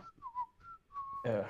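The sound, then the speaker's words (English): A person whistles a few short wavering notes, imitating an arrow whistling through the air, followed by a brief, louder burst of noisy voice at the end. “An arrow whistles through the air and hits him”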